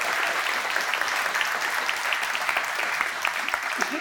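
Sustained applause from a church audience thanking the people who work there, a dense, steady crackle of many hands clapping at an even loudness for the full four seconds, with no voices standing out.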